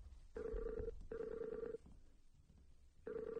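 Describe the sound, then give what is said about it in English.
A repeating electronic ringback tone of an outgoing Skype call to New York City: steady, buzzy bursts with bright overtones, each about a second and a half, separated by short pauses, heard alone without any talking. “So let's call her on Skype.”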